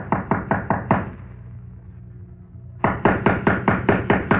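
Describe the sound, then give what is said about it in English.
Loud, rapid knocking on a door: a quick run of about five sharp raps, a pause of nearly two seconds, then a second, longer burst of about seven even, insistent knocks. “Well, are you going to open it”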